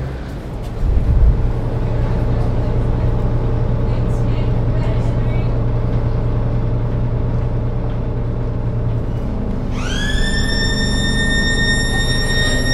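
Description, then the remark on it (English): A steady low engine rumble and road noise fill the inside of a moving city bus in Sheffield, with a high whine rising and holding over the last few seconds. “I'm on the bus, and I don't know what's that alarm.”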